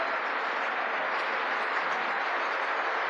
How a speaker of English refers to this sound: Oh, look, they all applaud.